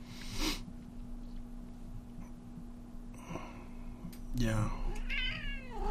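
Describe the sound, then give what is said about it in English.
A person imitates a cat, letting out a few drawn-out meows with rising and falling pitch, fairly loud over a faint steady background hum. “Meow. Meow.”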